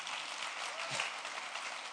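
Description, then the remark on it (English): An audience claps together in a dense, steady wash of applause that holds evenly for the full two seconds, sounding moderately soft, with no voices standing out. “You can clap a little. It's fine.”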